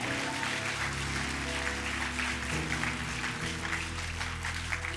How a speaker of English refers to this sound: If you receive this anointing, give them one more clap offering.